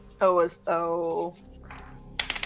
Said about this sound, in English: Just give me a random dice roll.